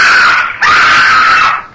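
A loud, drawn-out animal yowl rises in two sustained, high, wailing pulses, the second breaking in abruptly and trailing off, with no voices around it.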